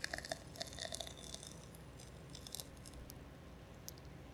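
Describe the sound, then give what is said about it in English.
Beer pours into a glass with a bubbly, gurgling trickle, then a steady hiss of fizzing foam building a thick head nearly to overflowing, with small irregular splashes, fairly quiet, with no talking. “I think my glass is going to overflow. That's a lot of head.”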